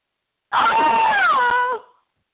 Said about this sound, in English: She screams towards the end of the movie.